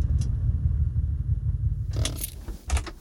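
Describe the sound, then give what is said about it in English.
An Aston Martin's low engine rumble rolls steadily for a couple of seconds as it pulls into a parking spot on a grocery trip, then gives way to bright metallic jingling and clicks, like keys, with no one talking. “Oh, and a parking spot.”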